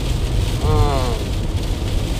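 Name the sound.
heavy rain pouring down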